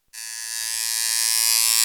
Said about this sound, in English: What is this noise? I hate it. It's a tattoo gun. It's buzzing. It's driving me crazy. It like gives me, let me turn it off because that could be annoying. But that sound just like gives me chills. Like, ooh, a tattoo gun.